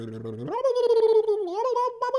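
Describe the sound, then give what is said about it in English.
A person imitates the howl of a coyote underwater through a gargle: the voice sweeps sharply upward, then holds a long, warbling, bubbly note, with no other talk. “That's the sound of a coyote underwater.”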